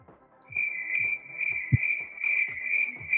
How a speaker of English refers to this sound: Crickets. Man, see, it got quiet already.